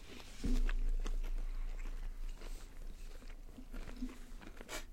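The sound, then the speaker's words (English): Crunchy barbecue-flavored chips being chewed: a steady run of sharp, crackling bites and crunches over about five seconds, moderately loud, with a low rumble underneath and no talking. “Have the barbecue flavor off the bat.”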